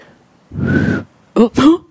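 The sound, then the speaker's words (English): A single breathy, airy human whistle holding one steady note for about half a second, followed by two short vocal sounds from a person. “Why was my whistling so bad?”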